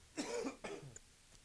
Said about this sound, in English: Don't worry, it's still wet. It's still a wet cough, not dry.